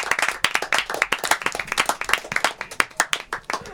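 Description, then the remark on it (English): An audience bursts into applause, a dense patter of many hands clapping steadily and fairly loudly for a few seconds, with no talking over it. “Let's just get a round of applause for everybody here.”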